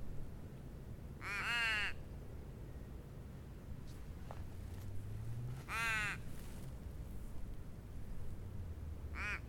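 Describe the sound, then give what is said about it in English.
Crows in a Casuarina tree give three harsh, raspy caws spaced several seconds apart, clear, over a low steady background rumble. “My Casuarina is full of crows, and my hovercraft is full of eels.”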